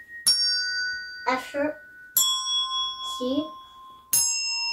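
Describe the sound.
Three tuned bells are struck one at a time, roughly two seconds apart, each note ringing clearly and sustaining. Between the strikes, a 4-year-old child with his back to the bells names each pitch by ear (E, low A, C, A sharp).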